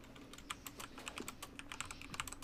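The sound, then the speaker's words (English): Rapid, steady typing on a computer keyboard, a dense stream of crisp clicks over a faint low hum, with no voices. “Someone is typing up a storm.”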